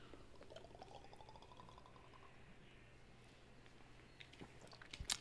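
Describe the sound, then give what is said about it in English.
Fireball whisky is poured into a small shot glass, the gurgling pitch rising steadily as it fills, over a low steady hum, followed by quiet sips and a sharp clink near the end. “What I love about Fireball is when you take the first shot and you have the burn in your mouth, and like 45 seconds later, that hits your stomach.”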